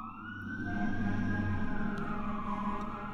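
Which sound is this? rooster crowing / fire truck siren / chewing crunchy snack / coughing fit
fire truck siren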